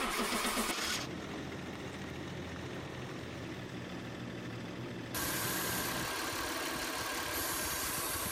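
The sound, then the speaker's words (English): A car engine cranks over and over without catching, a steady mechanical whirring of the starter that sputters on for several seconds, fairly loud, with no voices. “Can't believe this is happening again. I'm sick and tired of this car.”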